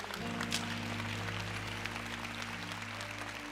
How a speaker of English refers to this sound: Come on, give God a round of applause, everybody.